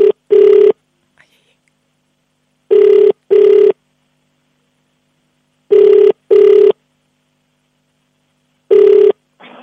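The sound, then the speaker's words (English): A telephone ringback tone sounds in paired bursts, double rings repeating about every three seconds with silence between, loud and clear with no talking over it. “Oh, it's ringing.”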